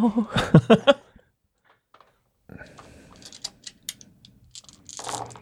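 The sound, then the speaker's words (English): A large handful of dice rattles and clatters, a dense run of sharp plastic clicks that spreads out over a few seconds. A short burst of voice comes before it. “That's so many dice. It's so many. It's a disgusting amount of dice.”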